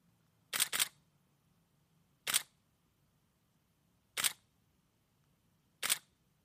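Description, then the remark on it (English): A Canon 5D Mark III DSLR camera shutter clicks four times at irregular intervals, the first a quick double snap, each crisp against a quiet low hum, with no talking. “So let's start first with the Canon 5D Mark III.”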